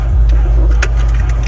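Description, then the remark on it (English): A steady low engine rumble fills the background as a woman gets out of a car after a date, with a single sharp clack partway through and a few faint shuffling knocks around it. “She's getting out of the car.”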